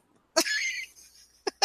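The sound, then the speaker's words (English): A voice mimics a Titan's fart with a buzzy, spluttering raspberry of about half a second, then two quick, sharp puffs of breath. It is fairly loud, with no talking. “He's like, hey, Titans still fart.”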